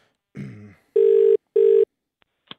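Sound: telephone ringing tone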